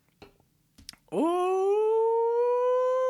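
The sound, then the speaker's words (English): A dog howls in one long, loud, steady note that swoops up at the start and holds for about two seconds, after a few soft clicks and shuffles. “Oh, doggy.”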